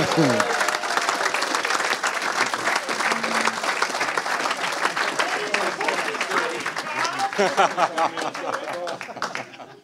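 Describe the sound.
A crowd claps in a sustained, dense round of applause for a guest who came all the way from Finland, lasting about ten seconds, steady and loud, with cheering voices and chatter mixed in before it tapers slightly at the end.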